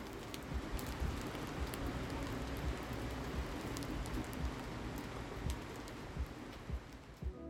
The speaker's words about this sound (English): It's currently raining. Can you hear it?